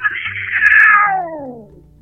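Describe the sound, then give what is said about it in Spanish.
A single long, eerie cat meow, loud, starting high and sliding slowly downward into a drawn-out, wavering moan before fading out. “El gato festejó mi confesión con un maullido escalofriante.”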